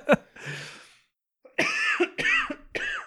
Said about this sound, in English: That cough actually sounds pretty good. For you might want to leave that in.